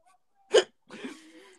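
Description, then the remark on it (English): A single sharp, loud hiccup imitated by a voice pretending to be drunk, abrupt, followed by a drawn-out slurred vocal sound like a tipsy groan. “The hiccups are what get me. Like, whenever I'm fake drunk, anytime I hiccup.”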